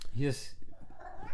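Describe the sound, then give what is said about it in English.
A cat named Pumpkin lets out one loud meow, a short rising-and-falling cry, complaining to be let in, followed by quieter indistinct voices and room noise. “And can you let Pumpkin in? He's just going to complain.”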